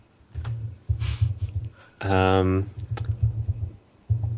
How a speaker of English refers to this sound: Yeah, That's a great pick, but you got to stop typing. Oh, yeah, you definitely have to stop typing.